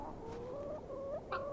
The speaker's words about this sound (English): What about these hens and roosters?